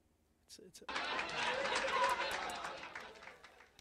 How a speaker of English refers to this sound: Yes. Sandy's got applause.